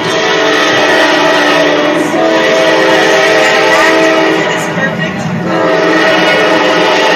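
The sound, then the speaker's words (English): A train rumbles past along the railroad tracks in Marietta with a loud, steady roar, its horn sounding in sustained harmonic blasts over the clatter of the cars. “We traveled along the railroad tracks, and as if on cue, the train came roaring by, bringing with it the haunting echo of a train whistle.”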